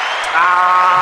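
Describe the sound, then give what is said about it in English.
A short burst of steady clapping and crowd noise, fairly loud, with a faint cheering tone rising through the second half and no voices talking. “Round of applause for that.”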